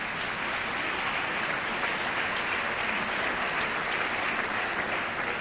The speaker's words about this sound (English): A lot of those people clapping weren't just Republicans. Right. That were just like, yeah, our guy won. There were people being like, that guy is a fucking grown up.